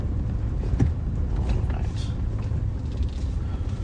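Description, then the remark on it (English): A truck engine rumbles steadily as it winds along a road, a continuous low drone with slight shifts in pitch, fairly loud throughout, with no one talking. “I'm just winding this truck around everywhere.”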